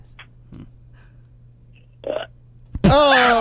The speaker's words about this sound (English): But right. We want a big, manly burp.